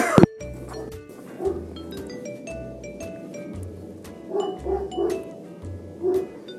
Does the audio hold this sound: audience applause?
no